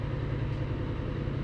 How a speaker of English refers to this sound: I don't know if they can hear this washing machine.